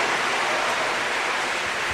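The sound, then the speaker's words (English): An audience applauds children who served as MC, preacher, choir and band, a dense, even wash of many hands clapping that holds at a constant, fairly loud level for the full two seconds, with no voices heard. “Let's give the Lord a big round of applause for these fantastic children.”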